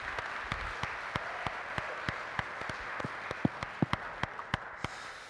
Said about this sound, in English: But it's a pleasure and a privilege to be able to welcome Bishop Paul to our church community and our church family this morning. Bishop Paul, we've laid two seats out. Why don't we give Bishop Paul a round of applause?